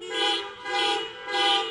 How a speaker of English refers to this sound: So what I'd like you to do on the count of three, I'd like everybody to honk their horn three times. Very Trinitarian of us. So on the count of three, I want you to honk your horns three times.